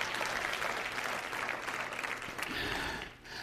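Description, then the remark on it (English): A church audience claps their hands to the Lord in the morning in a dense, continuous wash of applause lasting several seconds, thinning slightly toward the end. “Clap your hands. to the Lord this morning.”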